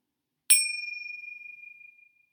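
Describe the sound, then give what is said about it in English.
A single bright meditation bell strikes once during a guided breathing practice, a cue to take a slow, deep breath, and rings out with a clear, sustained tone that slowly fades over about two seconds, heard alone in quiet surroundings. “every single time through today's practice that you hear the bell or the chime, that you take a slow, deep breath in through the nose and out through the mouth.”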